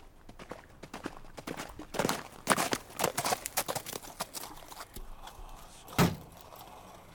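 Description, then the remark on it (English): Horse hooves clip-clop in a quick, steady run of sharp knocks on a hard surface, then thin out to a few scattered hits with one louder knock near the end. “It's a horse.”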